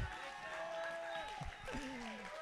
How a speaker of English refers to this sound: Come on, give him a big old round of applause. Let's go.